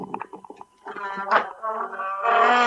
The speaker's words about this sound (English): My chair here actually sounds like Chewbacca. Wait a minute. Maybe you can hear it. Here I go.